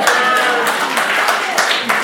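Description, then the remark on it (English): An audience clapping hands: a loud, dense, steady patter of many claps running throughout, with a few voices calling out underneath. “As you are clapping your hand, he say it was there.”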